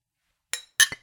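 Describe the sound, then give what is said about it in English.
Two bright glass clinks in quick succession, crisp like beer glasses touched together in a toast as a new beer is started, with a brief ringing tail and no talking. “By the way, I just started a new beer. Cheers, motherfuckers.”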